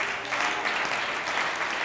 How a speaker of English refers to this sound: Oh, why don't you clap your hands in Jesus?